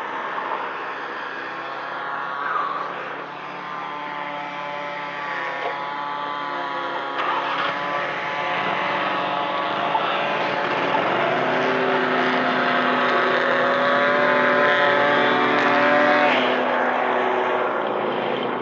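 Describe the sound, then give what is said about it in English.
A big landscaping truck parked on a street corner idles with a loud, steady rumbling drone that holds without a break, its tone rising and wavering slightly as it runs. No one speaks. “And he has this big truck parked here on the corner.”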